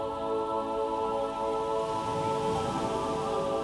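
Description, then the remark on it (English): Waves lapping on the shore make a steady, even wash of watery noise with no pauses, layered over soft sustained musical tones, with no voices present. “Listen to the lapping of the waves.”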